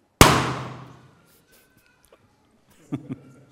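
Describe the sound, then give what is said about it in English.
A balloon bursts with one sharp, loud bang whose ringing tail fades over about a second. After a short silence come two soft, dull thumps close together. “We need the word of God to come and to judge the thoughts and attitudes of our hearts and to pop those, just like that balloon, that are not in line with what is actually true.”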